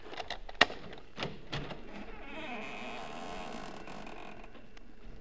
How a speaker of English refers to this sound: Well, we've opened the front door now. Maybe you heard the hinge squeak a little.